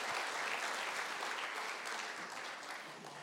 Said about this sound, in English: And the applause you're going to hear right now is love for you.